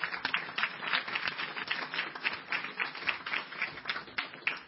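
A crowd applauds steadily for about five seconds, a dense, even patter of many hands clapping at once with no voices over it.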